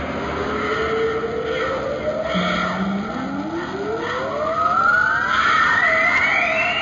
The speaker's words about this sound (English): There's a powering up sound effect of it, but there's something underneath of it. And I sat in my car listening to this over and over and over. I can't say which. I want to say Rhesus. I think it's audio of primates screaming.